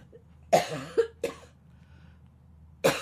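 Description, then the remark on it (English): A person coughs from haze and smoke in the air: a rapid burst of three harsh coughs, then a pause and one more sharp cough, with no talking. “And I'm going to cough.”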